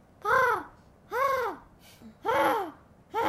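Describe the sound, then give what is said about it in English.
A voice imitates a pigeon with four rising-and-falling cooing calls, each about half a second long and evenly spaced, with short pauses between them. “That's a pretty good pigeon.”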